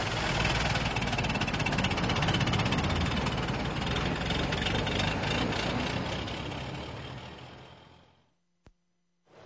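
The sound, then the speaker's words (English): A heavy, overloaded old truck engine rumbles and knocks steadily with dense low and mid vibration, holding loud for about seven seconds before fading out, followed by a short click and faint hum. “And take her slow, Tom. She's overloaded.”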